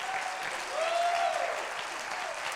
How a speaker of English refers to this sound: I'll clap your hands and let's praise the Lord.